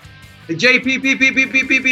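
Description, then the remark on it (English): A distorted voice over a remote caller's phone line breaks into a rapid stuttering repeat, the same syllable looping several times in quick, even pulses like a line echo, loud. “Well, maybe now you're echoing.”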